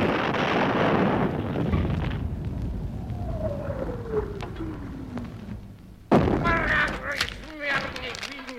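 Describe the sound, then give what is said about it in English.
A cannon is fired after its fuse is lit: a loud blast booms and rumbles away over a couple of seconds, a thin descending whistle follows, and then voices break in suddenly near the end. “I will light that not a little fuse on the cannon.”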